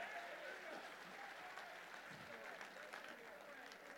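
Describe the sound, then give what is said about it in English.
An audience at a church service claps their hands to Jesus Christ in a steady, dense wash of applause that fills the room, with faint voices mixed in beneath the clapping. “Somebody clap your hands to him in this house.”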